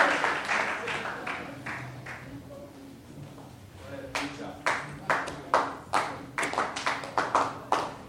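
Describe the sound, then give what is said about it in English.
A church audience claps their hands for the Lord, scattered at first and then settling into a steady, rhythmic beat of sharp claps, with faint voices murmuring underneath. “Clap your hands together for the Lord.”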